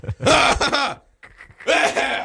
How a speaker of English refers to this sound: Thank you for clearing your throat into the microphone.